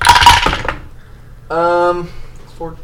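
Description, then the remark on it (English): A quick, bright clatter of d10 dice rolling and tumbling across a tabletop for about half a second during a damage roll in a tabletop role-playing game, followed after a pause by a person's voice. “Where's my d10? I don't know. Oh, d10.”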